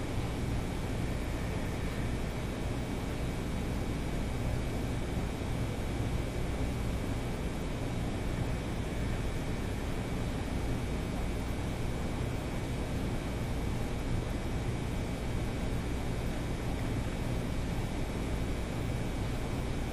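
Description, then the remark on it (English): A steady, unbroken mechanical hum from an air conditioner running constantly fills the whole stretch, a broad noisy drone with a low rumbling base, with no other sounds. “Forget the air conditioner.”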